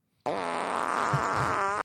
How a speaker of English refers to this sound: Fart noises are always good.